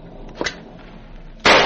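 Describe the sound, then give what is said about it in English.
Two gunshots fired from the head of the stairs ring out: a sharp, moderate crack followed moments later by a much louder, harsher blast that lingers, with no voices. “Those shots came from the head of the stairs, amigo.”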